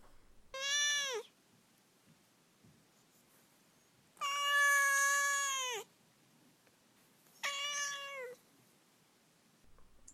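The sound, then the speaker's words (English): A cat named Duarte meows three times: a short call, then a long drawn-out yowl, then another short meow, with quiet pauses between and no talking. “okay, now we will move on to Duarte's corner, where my cat Duarte will get to share his opinions about this book.”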